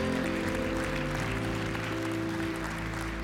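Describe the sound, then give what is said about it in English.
A church audience claps steadily in praise of God, a dense continuous patter of many hands over sustained low keyboard chords that hold throughout. “Come on and give him a hand clap of praise in this house.”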